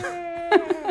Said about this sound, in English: The baby's crying.